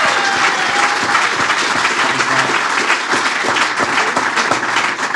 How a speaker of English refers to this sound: We also need to have a massive round of applause for someone who has helped us all year long.